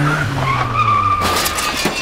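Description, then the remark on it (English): Car tires squeal and skid in one sustained, piercing screech over a low engine rumble, loud, ending in a burst of noisy scraping, as a young man who cannot drive takes his dad's car for a spin. “There was a young man who, without knowing how to drive, without permission or a license, decided to take his dad's car for a spin.”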